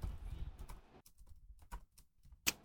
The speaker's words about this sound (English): Hang on, I'm just typing.